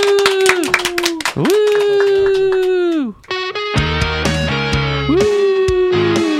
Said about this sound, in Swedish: Ska vi köra en applåd till den? Ja!